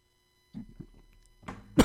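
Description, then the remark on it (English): A loud cough ends a short run of choked, sputtering throat sounds, with a harsh burst building just before it, as someone chokes on a drink. “You're choking on your drink beverage there.”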